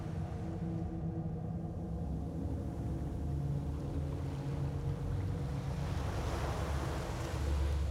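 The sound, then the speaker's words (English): Ocean waves wash continuously with a steady low rumbling hum beneath, the surf swelling slightly louder toward the end. No one speaks. “Can you hear the ocean?”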